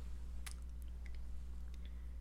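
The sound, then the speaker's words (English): Wet slurping and mouth noises from someone sipping a drink into a sensitive new microphone come in a few short, smacking bursts over a steady low hum, with no one talking. “if you can hear like slurping and all that”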